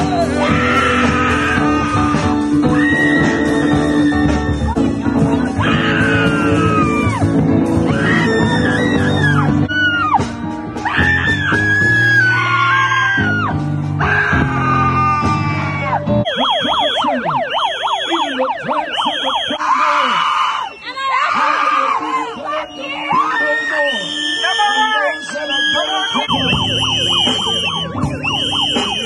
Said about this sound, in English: The left, you can hear very distinctly. It'll come out in the forms of yells and police whistles.